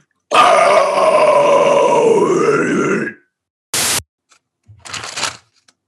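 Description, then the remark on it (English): A voice imitates paper being crumpled: a loud, rough, crinkly rush lasting about three seconds, then two short crackly bursts after a brief pause. “Oh, that's a good paper noise.”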